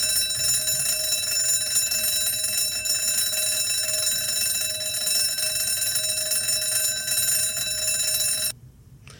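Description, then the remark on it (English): A device's second alarm sound: a loud, continuous metallic bell-like alarm ring, buzzing steadily with dense rapid strikes for about eight seconds before cutting off abruptly, leaving a short low hum. “She reminds me of a school bell.”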